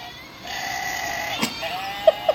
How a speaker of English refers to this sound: And it is the emergency goat screamer. It bleats, has little baby goats, and then it has a herd of goats.